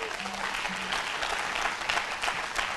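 An audience claps their hands for a pastor in steady, dense applause, many overlapping claps blending into a continuous crackling wash that holds at an even loudness for about three seconds.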